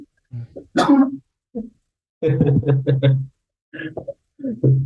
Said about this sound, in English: Is it coughing on your end or mine?